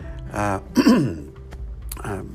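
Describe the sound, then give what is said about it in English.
A person clears their throat several times in quick succession, fairly loud, with rough guttural rasps and short voiced grunts, no speech. “at my job, you breathe a lot of dust, so forgive my clearing my throat.”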